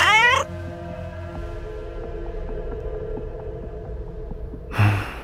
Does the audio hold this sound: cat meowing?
yes